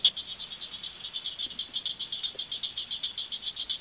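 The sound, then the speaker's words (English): Rapid, sharp clicking calls of southern cricket frogs, like marbles tapped together, repeating in a steady quick rhythm with overlapping callers, some nearer and others fainter behind. “Southern cricket frogs to me sound like somebody clicking two marbles together, or maybe two pebbles”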